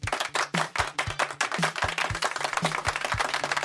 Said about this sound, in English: So, yay! Round of applause.